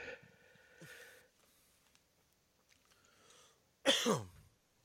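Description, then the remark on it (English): A single breathy yawn bursts out loudly near the end, its voiced tone sliding downward in pitch, after a long stretch of near silence with only faint rustles. “No, I was yawning.”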